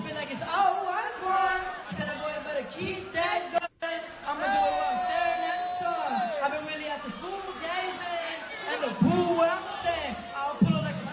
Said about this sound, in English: So they're booing him on stage. Everyone's laughing at him.